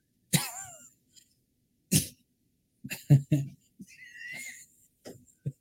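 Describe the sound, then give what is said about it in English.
A German Shepherd playing fetch with a neighbor barks in short, sharp bursts, a handful of loud woofs spaced irregularly with quiet gaps, the first one trailing into a whiny, falling yelp. “Oh, one of your neighbors out there playing fetch with their German Shepherd.”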